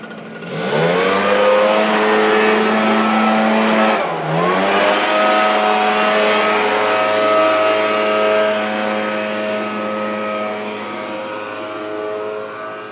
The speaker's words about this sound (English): That is a street sweeper, I think. And it's going to get even louder when the door opens. Or when the door is open. Listen. Prepare to die for your ears.